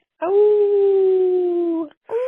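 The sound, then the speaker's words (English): A person imitates a wolf howl: one long, loud, sustained tone that slowly slides downward for nearly two seconds, then a second howl begins right after a brief pause. “Not quite howl-worthy necessarily, but to me the moon is always howl-worthy, don't you think?”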